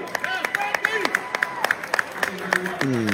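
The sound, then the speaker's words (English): A thin smattering of applause from a sparse audience at an event as a performer ends a song on acoustic guitar: scattered, uneven claps from a handful of people, fairly soft, with a few voices talking faintly underneath. “There will be a smattering of applause when he ends.”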